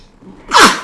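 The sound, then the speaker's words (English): A single sharp sneeze bursts out after a brief quiet inhale, loud and breathy with a bright hissing spray before cutting off quickly. “Bless you.”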